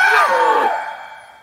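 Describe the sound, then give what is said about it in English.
A man, waking groggily and looking straight into the face of an alien captive, lets out a single loud, strained scream, starting at full force and then trailing off and fading over about a second and a half. “He opens his eyes groggily and looks straight into the face of the alien captive, who is also just waking up. He screams.”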